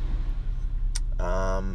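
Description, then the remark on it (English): A steady, low engine rumble inside a car idling in a long line of traffic, broken by a brief sharp click and then a short, buzzy tonal sound toward the end. “recording it in my car while I sit in traffic”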